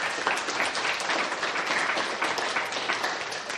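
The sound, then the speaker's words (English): An audience applauds steadily in thanks to people who shared their values, many hands clapping together in a dense, continuous wash of sound that stays fairly loud and even for several seconds with no voices standing out. “And I just think I would like you to give them a round of applause saying thanks very much.”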